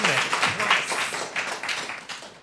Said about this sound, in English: Doctor Stranger Things are on 7 points, and Moulin Rouge are also on 7 points. Oh, round of applause for both teams.